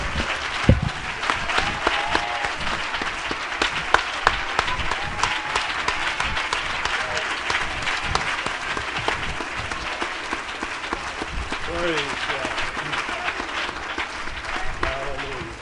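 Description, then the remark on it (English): An audience gives the Lord a hand clap in worship, a loud, sustained burst of dense applause lasting the whole stretch, with scattered voices and faint cheering mixed in beneath the clapping. “Now let's give the Lord a big hand clap.”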